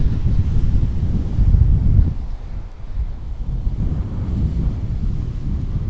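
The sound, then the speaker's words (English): Strong wind buffets the microphone outdoors on a windy day in a continuous low, rumbling roar that swells louder in the first two seconds, then eases slightly while staying steady. “And it's quite a windy day.”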